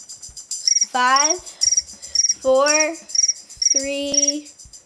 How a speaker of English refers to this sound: Here's crickets.